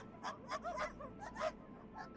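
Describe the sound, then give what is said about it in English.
Sled dogs near the sleds bark and whimper, one dog setting off the others, in a quick run of short, high yips and whines, overlapping against a steady background hum, with no one talking. “Boy starts to like set off the other dogs, you know, that are near the sleds and whatnot.”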